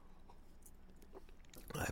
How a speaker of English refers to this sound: And I have to take a excuse me. I have to take a sip of my water.